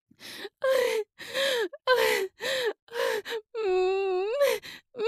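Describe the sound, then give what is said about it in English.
A woman's voice gasps and moans in quick, breathy bursts during sex, about ten in a row, fairly loud, with one longer drawn-out moan near the end. No words are spoken. “I'm gasping, they are grunting.”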